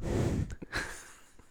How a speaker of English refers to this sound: Heavy breathing. Good rhythm.